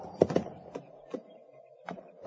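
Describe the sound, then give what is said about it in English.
A horse's hooves stamp and shuffle in a handful of irregular, dull thuds, fairly quiet, with no voices. “Oh, hold still, horse.”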